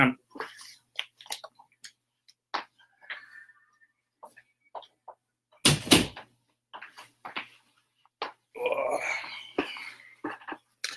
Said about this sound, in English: I got to close this door. I can hear stuff.